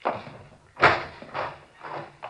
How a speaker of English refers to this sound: Fine. Here, I'll get the door.